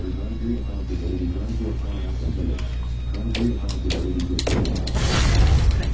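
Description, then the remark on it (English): A bar shatters in a video game: a quick run of sharp, crackling clicks that builds into a louder, noisy breaking burst near the end, over a steady low hum and faint voices. “Oops, I heard one shatter.”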